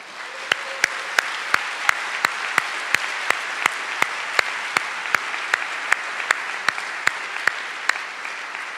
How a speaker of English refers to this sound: Can we give a big round of applause to all of our star 14s and star 15s?